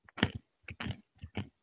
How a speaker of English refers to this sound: So I can hear you chewing. Okay, I'll stop. No more macadamia nuts.